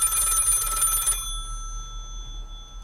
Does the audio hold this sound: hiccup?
no